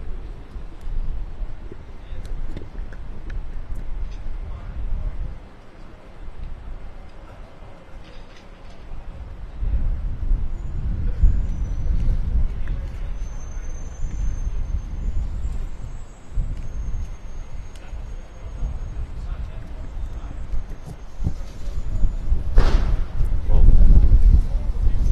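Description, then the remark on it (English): Strong wind roars and buffets the microphone outdoors in downtown Providence, where things are starting to blow around, with heavy low rumbling that surges in gusts, loudest near the middle and again at the end. A voice may be faintly present beneath it. “Getting, folks, very windy down here.”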